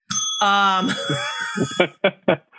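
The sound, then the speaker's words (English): A bright bell rings once, loud, its shimmering tone lingering for over a second while voices start talking and chuckling over the fading ring. “Wait, that got the bell because it's your mother's voice and she's Jewish?”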